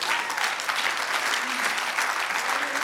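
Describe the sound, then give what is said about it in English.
A crowd claps steadily and densely throughout, a sustained wash of applause from many hands filling the space at moderate loudness, with no pauses. “Oh, I wish somebody clap your hands.”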